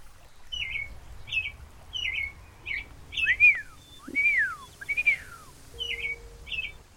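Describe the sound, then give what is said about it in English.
A small bird chirps in quick repeated bursts, then gives three louder rising-and-falling whistled notes before returning to short chirps, clear over a faint low background hum. “Do you like me, little bird?”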